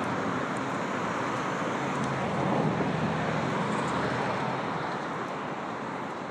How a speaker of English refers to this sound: I like the sound of cars moving.